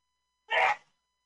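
sneeze

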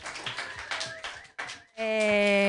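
audience clapping hands

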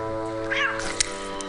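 cat meowing

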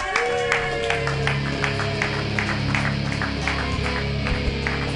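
audience applause

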